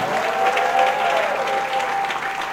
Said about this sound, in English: In Jesus' name, give the Lord a shout and a clap.